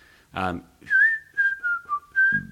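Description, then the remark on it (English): A person whistles a short, wavering melodic line imitating a lead guitar melody, the pure tone gliding between notes, with brief bursts of voice before and at the end. “He's off on the whistle.”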